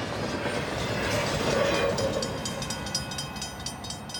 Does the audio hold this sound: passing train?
yes